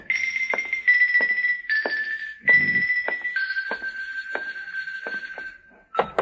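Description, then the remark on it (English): A series of sharp, irregularly spaced knocks on a door, about ten in all, sounding over a steady, bright high-pitched tone that drones throughout with brief breaks. “Come on, answer the door.”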